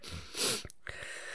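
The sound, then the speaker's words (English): A person yawns once: a short low vocal groan slides into a loud, breathy rush of air that fades quickly, with no talking around it. “By the way, the more you talk about me yawning, it's just going to make me yawn.”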